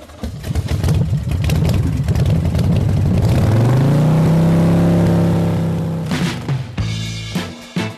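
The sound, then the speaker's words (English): A loud motorcycle engine revs up, its pitch climbing and holding at a high roar before dropping into a few choppy throttle bursts at the end. No one speaks. “Rev up those engines because it's time for the San Diego Indian Motorcycle Radio Show”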